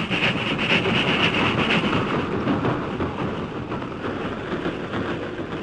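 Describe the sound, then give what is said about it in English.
A steady, loud rumbling roar of a train rolling past, broad and continuous with a windy, rushing texture, holding fairly constant for several seconds with no voices; the train crosses the crest of Jackknife Hill heading westward, carrying a shipment of gold. “When the train had passed, the masked man turned to Tonto.”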